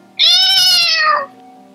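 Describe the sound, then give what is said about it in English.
A single loud, drawn-out wailing meow, a human voice imitating a cat, rises and then slides downward over about a second, standing alone with no talking around it. “Okay, anyways, so after a significantly long time, several cats make wailing noises.”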